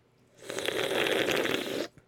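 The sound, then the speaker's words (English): A single drawn-out slurping sip of Starlight Coca-Cola lasting over a second, with a hissy, fizzy edge as the carbonated drink is sucked in, then it stops abruptly. No talking. “Let me take another sip of my Starlight Coca-Cola.”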